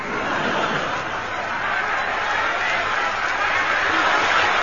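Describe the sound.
A large crowd of thousands of people on the pavements roars and cheers in a steady, dense wash of voices that fills the whole stretch, loud and continuous, with scattered shouts and laughter blending into the din.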